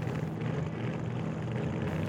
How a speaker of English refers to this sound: The hydroplane revs up into turbo mode! The engines blast plumes of flame as the hydro approaches the bankers!